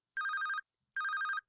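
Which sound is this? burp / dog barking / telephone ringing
telephone ringing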